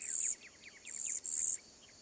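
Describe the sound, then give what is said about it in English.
Cedar waxwings give high, thin, wheezy calls in three sustained bursts, with softer quick chirps scattered between them, clear with no talking. “If you examine closely the colors, shades, and adornments of cedar waxwings, these sleek and handsome foragers may become your favorite bird.”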